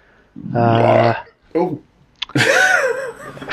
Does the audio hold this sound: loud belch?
yes